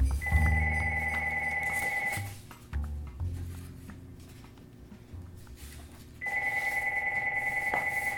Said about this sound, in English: you end up getting pretty good at ignoring the sound of a ringing phone. It's got to be one of my kids, because they know both numbers. No, it's not. It's some salesman I never heard of.